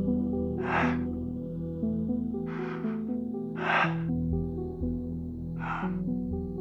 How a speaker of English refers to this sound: I pressed play. It began with several seconds of heavy breathing.